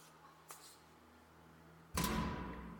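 A faint tap, then after a pause a single loud knock on wood, followed by a lingering hollow rumble. No one speaks.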